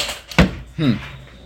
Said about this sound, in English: Your chair is really squeaky.